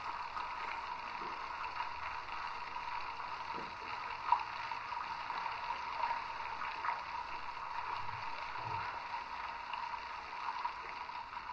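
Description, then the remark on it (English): A hydrophone recording underwater in the Pacific Ocean on the equator: a steady wash of dense, hissing noise with a faint hum near the middle, broken by occasional soft clicks and low thumps. “That's the Pacific Ocean on the equator.”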